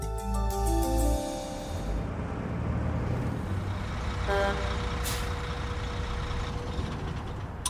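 Heavy truck engines rumble and idle close by, with a deep low drone throughout, a brief hiss of air brakes and a short tonal beep mid-way as vehicles maneuver.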